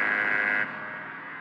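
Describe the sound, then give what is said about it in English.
The horn of a top-of-the-line Tesla SUV, set to sound like a train whistle or ship horn, honks during an automatic lane change. It gives one loud, brassy blast lasting just over half a second, a rich sustained tone that suddenly drops to a softer lingering hum. No voices are heard. “That's the horn in the car. Kind of train whistle or a ship horn, I think he put in there.”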